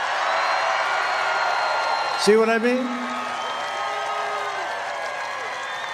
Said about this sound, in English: But, you know, every time I introduce him, he gets the biggest applause.